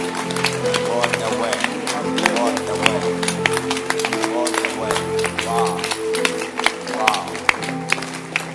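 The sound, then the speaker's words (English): An audience claps their hands together, a dense, steady patter of sharp claps running throughout, mixed with sustained low tones and voices. “Just clap your hands and let's clap this up.”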